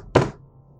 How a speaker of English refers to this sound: There's a knock on your door. Just one quick.